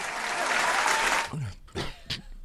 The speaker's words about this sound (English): So, I mean, there's no need for a clap that long for that.